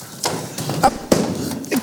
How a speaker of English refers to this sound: A drawer. There it is, sir.